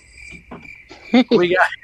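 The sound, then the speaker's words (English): Crickets chirp in a steady, high-pitched trill that continues faintly in the background, partly drowned out near the end by louder sounds. “That's where the cricket or the frogs in there.”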